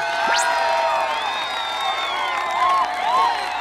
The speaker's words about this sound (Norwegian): La meg presentere den strålende og ærverdige borgermesteren i Mogan. Og kandidaten som jeg personlig stemte på. Gi en stor applaus til herr Juanito Colorm.